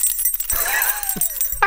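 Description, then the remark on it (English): Prop handcuffs from a made-for-TV movie about John Wayne Gacy jangle in a bright, metallic rattle lasting under two seconds, fairly loud, with a few sharper clinks and a thin sliding tone running underneath. “He's holding his keys. These are keys to... I know that they're handcuffs.”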